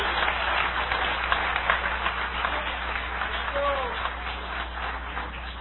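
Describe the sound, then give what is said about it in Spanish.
A church audience applauds the Lord Jesus Christ, many hands clapping in a dense, steady roar that runs the whole time, with a few faint voices and a brief cheer rising through it. “Dale un aplauso de poder al Señor Jesucristo.”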